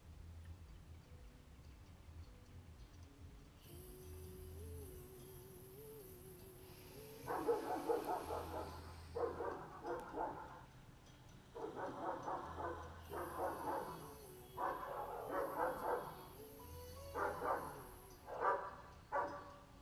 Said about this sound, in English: And just acknowledging the noise. If you hear my dogs barking, they are part of this cosmic dance.